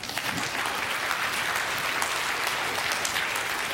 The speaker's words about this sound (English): That's where you clap again.